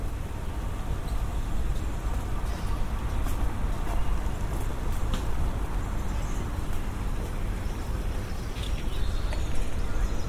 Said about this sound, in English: And today I'm in Lincoln's Inn Fields in Holborn in London. Oh, the rain's really coming down now. I'm going to stand under this tree so you can hear it.